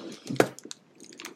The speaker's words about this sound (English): What am I hearing? Are you eating that coconut?